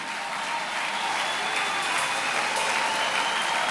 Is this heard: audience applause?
yes